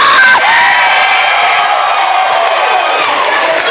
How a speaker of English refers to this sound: I need y'all to scream in here.